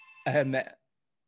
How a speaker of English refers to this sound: Bell's going off.